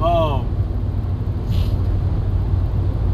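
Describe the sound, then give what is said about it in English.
A heavy truck rumbles past, its low engine drone steady throughout, with a brief descending squeal at the start and a short burst of air-brake hiss midway. “Okay, truck. Slide on by you.”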